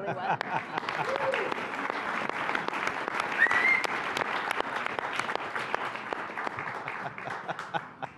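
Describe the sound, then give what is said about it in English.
An audience breaks into sustained applause, a dense, steady wash of many hands clapping that holds at an even loudness for about eight seconds, with a few murmuring voices underneath. “Actually, before we do me, can we just another round of applause for you?”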